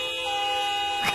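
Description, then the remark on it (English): A car horn in a drive-through line for Krispy Kreme donuts blares in one long, steady, loud blast, its tone holding flat for over a second before a brief burst of other noise cuts in at the end. “People would be in line for the donuts, but they would keep honking their horns.”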